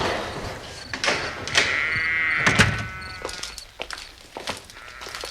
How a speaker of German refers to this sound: Das Stalltor.